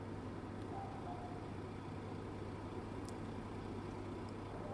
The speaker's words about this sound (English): As you can hear, there are dogs in the background, and don't know if you can hear the buses outside in the car park.